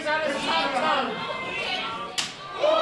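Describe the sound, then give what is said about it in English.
A single loud, sharp open-hand slap lands against bare skin, a wrestling chop to the chest, cracking out over the steady murmur of a crowd and people talking. “That, however, was a very big chop.”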